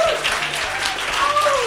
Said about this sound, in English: Thank you. Thank you very much for a polite British round of applause.